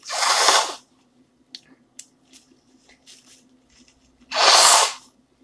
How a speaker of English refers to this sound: Hold on while I blow my nose.